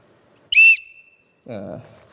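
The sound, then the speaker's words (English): A single short, shrill blast from a cheap, toy-like whistle kept in a first aid box, loud, with a thin tone trailing off before a man starts talking. “It's like a toy from Crash. It doesn't sound like a good whistle at all.”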